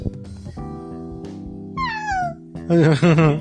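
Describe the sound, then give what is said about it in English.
A child's voice imitates a cat, giving a falling, drawn-out meow followed by two louder, wavering meows, over a steady humming tone in the background. “How about a kitty?”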